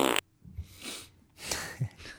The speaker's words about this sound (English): Let us know if you like the fart, by the way.